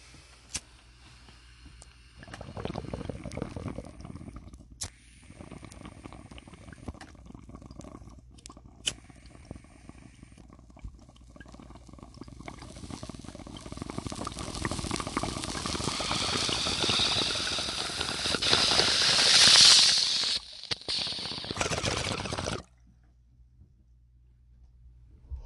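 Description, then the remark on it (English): Bubbling water from a bong hit, a steady gurgling rumble that runs for about twenty seconds, grows louder and hissier toward the end, then cuts off abruptly. No one speaks. “You're taking the toke.”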